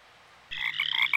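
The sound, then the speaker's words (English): A sudden chorus of frogs, the biblical frogs that came up and covered the land of Egypt, croaking loudly, their pulsing calls overlapping in a dense, rhythmic chatter after a brief quiet moment, with no voices present. “So Aaron raised his hand over the waters of Egypt, and frogs came up and covered the whole land.”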